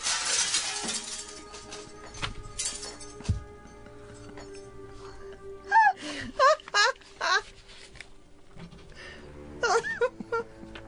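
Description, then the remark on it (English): Glass shatters in one loud burst at the start as a bullet passes through a man, then fragments tinkle faintly as it settles. Several strained, moaning vocal cries follow later. “Behind him splatters with blood and shatters.”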